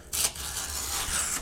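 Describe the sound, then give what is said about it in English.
Steady rustling and crinkling of a sheet of paper being grabbed and handled, with brighter swishes near the start and end, lasting just over a second with no voices. “So I'm grabbing another piece of paper.”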